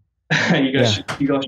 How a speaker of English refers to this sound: I got another water to clear my throat, but no, I agree with that.